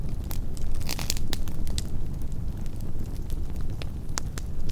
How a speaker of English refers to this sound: And they just keep it burning. They keep piling stuff on this gigantic bonfire at the cave opening. And they keep that going for days on end.